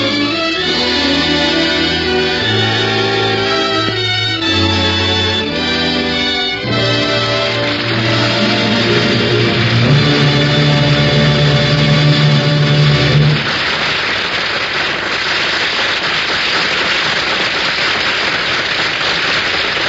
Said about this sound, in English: Ladies and gentlemen, the audience here in NBC's Studio 6A in New York City have been applauding the Ford Theater's presentation of A Star is Born.